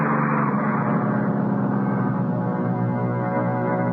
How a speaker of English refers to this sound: Oh, okay, here's the bus.